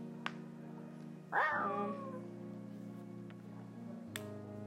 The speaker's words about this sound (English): I didn't even know foxes made noises. They scream like a freaking cat.